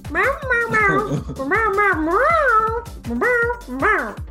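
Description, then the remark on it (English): A person's voice imitates a cat named Captain, letting out a series of drawn-out, rising and falling meows, fairly loud, with short pauses between them. “Otis looks at the cat like he wants to kick it, but realizes that it's his friend Captain and is not going to kick it.”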